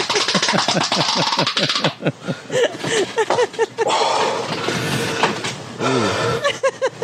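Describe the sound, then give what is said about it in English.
Loud heavy breathing with strained grunts and groaning vocal noises from a man straining on the toilet with constipation, coming in rapid, effortful bursts for several seconds. “Why the breathing? He has to breathe hard.”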